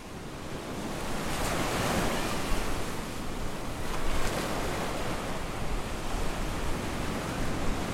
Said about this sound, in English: I'm standing on a beach. The Mediterranean Sea is wide open. I look towards the west. The place in which I'm standing at is serene. The last hours of a summer's day, people are jogging on the beach. Kids are splashing in the water.